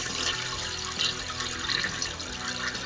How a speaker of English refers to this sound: Didn't hear it? It did sound like it. That's Glen Helen. It's a toilet flushing.